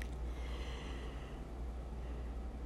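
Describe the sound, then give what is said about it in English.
A single long, breathy yawn, a drawn-out exhale that fades after about a second over a steady low background hum. “One, sorry, I had to yawn, guys.”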